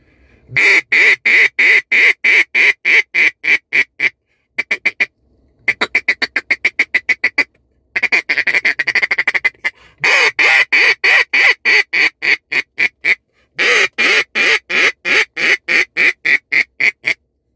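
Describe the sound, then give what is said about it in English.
A Blizzard duck call from Beaver Creek Game Calls blown loud as a short demonstration, rattling out long runs of rapid, evenly spaced quacks broken by short pauses, with no talking over it. “Guys, that's the Blizzard from Beaver Creek Game Calls.”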